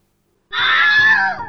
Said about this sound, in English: You go to talk to your friends, but they scream and point at you.